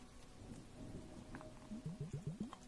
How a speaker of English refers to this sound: Listen to the bubbles while your face is being moisturized.